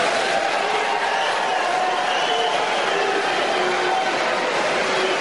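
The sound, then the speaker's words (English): A large debate audience applauds loudly, a dense, steady wash of clapping that holds at full strength for about five seconds with no voices rising above it. “Yeah, that monstrous applause is from that moral audience.”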